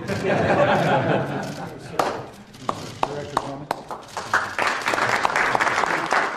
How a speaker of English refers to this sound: And of course, here at the end, that's them literally applauding James Comey.